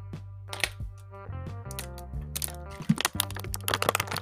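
A door opens as the speaker's mother enters, with a run of sharp clicks and rattling clatter from the latch and handle, irregular and fairly loud, over a steady low hum, with no one talking.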